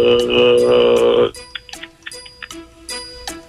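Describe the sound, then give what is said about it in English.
A loud, buzzy sustained tone cuts off after about a second, then a steady clock ticking takes over as a timer in a word-category game, with crisp, evenly spaced tick-tock clicks at a quick, regular pace and no voices. “Time is ticking. Time is ticking.”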